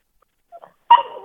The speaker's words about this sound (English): Also, can you tell that dog in the background just to hush up?